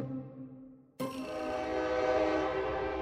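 A train sounds its horn in steady, sustained tones, then a loud rush of rumbling, clattering rail noise swells in and fills the rest of the scene, with no voices.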